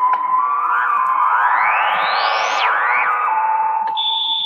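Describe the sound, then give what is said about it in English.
A heavily effected guitar tone washed in spring reverb: a steady ringing note swoops upward in a long glide, snaps back down, rises briefly again, then settles. Loud and continuous, with no voices. “You hear that spring reverb from the grandma.”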